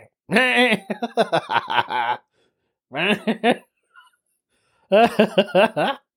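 A human voice imitates a goat's bleat in several quavering, wavering bursts, loud, with short pauses between them and no other sounds around.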